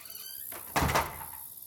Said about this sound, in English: Come on in and shut the door. Make yourself to home.